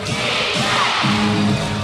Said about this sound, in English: And the refs are just trying to decide who this ball will go to. It will be a Breakers ball. Yeah, it has to be. So they're saying Sunday Detch touched the last. Adelaide crowd don't like it.